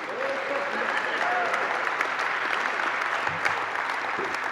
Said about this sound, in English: There's about 1,000 people in the room, about 150 applauded. That means the other 850 liked the two-road concept.